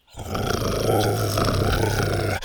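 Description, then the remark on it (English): A low, sustained animal growl from Buck rumbles loudly for about two seconds, steady and throaty with a slight rise and fall, no talking. “Buck stepped up to Dr. Rex and growled.”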